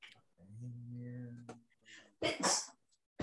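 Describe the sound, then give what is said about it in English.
A single sneeze during a tabletop role-playing game session: a drawn-out voiced intake building up, then a sharp, loud, breathy burst, followed by a brief quiet tail. “Bless you.”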